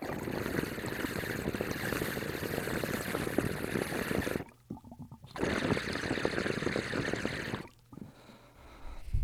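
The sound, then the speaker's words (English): A loud, steady engine exhaust rumble from a 2021 model vehicle, with a rapid pulsing purr, dropping away briefly twice before surging back. No one speaks. “More of like a rumble and purr. It just sounds like some nice exhaust,”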